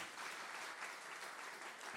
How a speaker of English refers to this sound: Your generosity has made it so that over 200 people have placed their faith in Jesus this year alone at Soma. And yeah, y'all clap for that. Let's go.